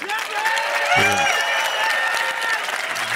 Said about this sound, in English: Yeah. Wow, that was pretty hot. That was good. That was better than the Amazon clap. So that's an 8.